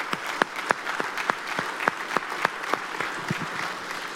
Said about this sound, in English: Can we just applaud and recognize our mothers this morning? Can we thank them for everything that they do?